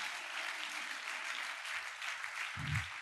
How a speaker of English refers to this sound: I thought you were going to clap.